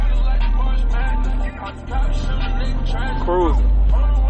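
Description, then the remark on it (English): A steady, loud low rumble of a big truck rolling along a road through town, with a brief dip partway through and a voice talking over the engine and road noise. “I'm like Kevin Hart size getting out this big ass truck”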